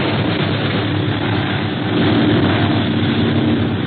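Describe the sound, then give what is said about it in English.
A loud, steady drone of a 12-motor airplane in flight, a continuous rumbling roar that swells slightly midway and holds without pause. No voices are heard. “Gosh, this plane has 12 motors. It's hard to outfly a pursuit plane.”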